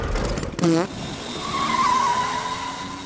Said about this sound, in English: I'm off to test out my new ride. This bathtub car fast or what? Oh, she's fast. Better buckle up,